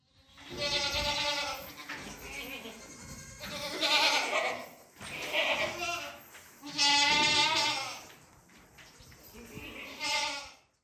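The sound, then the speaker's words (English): A farm goat bleats repeatedly, about five loud, quavering calls in close succession with short pauses between them, with no talking. “So right now I'm working with farm animals. In particular, I'm working with goats.”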